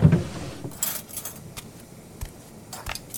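Metal silverware clinks and rattles as a drawer is rummaged through, a series of bright, irregular jingles and taps after an initial low thump, with no one speaking.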